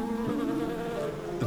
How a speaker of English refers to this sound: These are red bumbles. A lot of entomologists dispute over whether these are true bees or not.